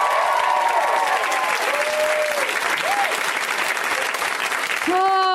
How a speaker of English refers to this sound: All the comics are in back. They can hear you. Let's hear it. Let's clap it up for those people.